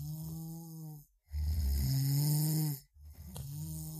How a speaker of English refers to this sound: The only thing you notice for the rest of the evening is the snoring of the kobolds below you.